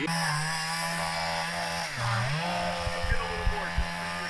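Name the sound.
chainsaw running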